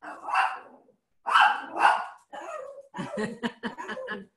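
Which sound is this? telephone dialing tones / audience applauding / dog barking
dog barking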